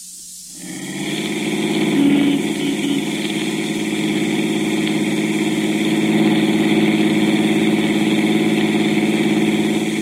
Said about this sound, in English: Well, that's an automobile. An automobile, so? A car, man named Carl.